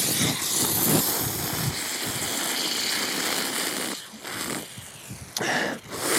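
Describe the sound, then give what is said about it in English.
A steady rushing hiss runs through the first few seconds, then a sharp pop as a can of Guinness cracks open, followed by a short fizzing hiss. No one speaks. “This opening Guinness could be the dumbest idea I've had.”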